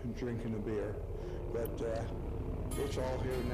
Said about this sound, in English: So it's a car being turned on. It's a Chevrolet old. It's the that's the model, an old.